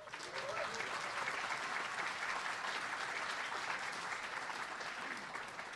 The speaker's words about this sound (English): All right, without further ado, let's give a round of applause for Mr. Jon Harris.